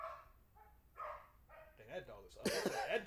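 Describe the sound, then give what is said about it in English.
A dog barks in a quick run of loud yaps that grow sharper toward the end, with faint voices murmuring in the background beforehand. “That dog's trying to chime in.”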